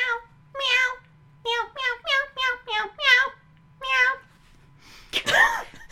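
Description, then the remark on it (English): A voice imitates cats meowing to music, giving about nine loud meows in a quick singsong rhythm, with a faint low hum in the gaps and a harsh noisy burst at the end. “Meow, meow, meow, meow, meow, meow, meow.”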